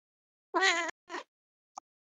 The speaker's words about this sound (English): Jesus Christ. What's wrong with your cat? She's drum rolling.